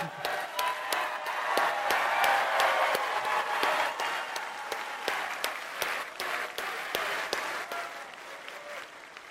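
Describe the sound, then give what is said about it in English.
A crowd breaks into steady applause, dense overlapping claps filling the whole stretch with a few sharper individual claps standing out, holding fairly loud and only easing slightly toward the end. “Nick Searcy is also in the movie, and if you clap for him, I'll walk off the stage.”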